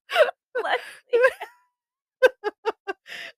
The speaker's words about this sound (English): It's very cozy and it's quiet because there's no children. Just a snoring dog. Just my fat dog snoring, which is fun.